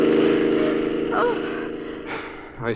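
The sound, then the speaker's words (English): A car engine roars steadily as it races down the street with people holding guns out its window, a low droning rumble that fades slightly, with brief vocal cries and gasps breaking in over it. “That car racing down the street. They're holding guns out the window.”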